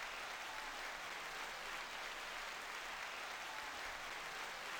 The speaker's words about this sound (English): Welcome to 2021. I just want to give ourselves, you know, like a pat on the back. Can we get some hand claps for that, please? We survived. We made it.